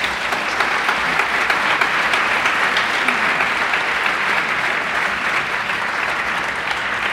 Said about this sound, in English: I'm not sure we've ever gotten, like, per segment applause before. You guys are the best.